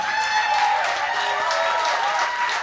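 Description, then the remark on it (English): A crowd at a live session at radio station KXP applauds steadily, a dense wash of many hands clapping at once, staying loud and even throughout with no voices standing out. “I'm just going to get this clap going for KSP as well.”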